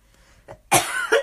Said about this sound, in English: Sorry. Oh, God, my voice hurts. You could cut that cough out if you want.